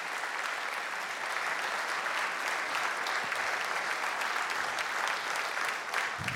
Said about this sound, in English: If you would, please give a round of applause to the class of 2021.